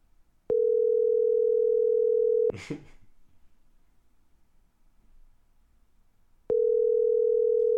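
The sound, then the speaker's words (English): A telephone ringing tone plays while redialing a dropped call: a steady electronic hum lasting about two seconds, a brief clattering noise, a long quiet gap, then the same tone starting again. “And it's ringing on the episode.”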